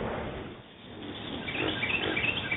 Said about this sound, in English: Birds, hyenas, chimpanzees.